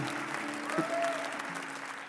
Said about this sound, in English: Yeah, you can clap. It gets better.